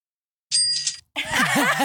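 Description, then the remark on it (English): A bright, ringing Venmo payment notification chime sounds once on a phone for about half a second as a $20 payment arrives, clear, followed immediately by a loud, wavering, warbling sound that resembles an excited voice. “I'm gonna send you this memo. Dunkin' bet. $20. Here it comes. Is your phone on loud?”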